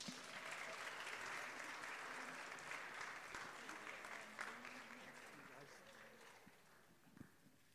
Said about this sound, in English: Can we give them an applause?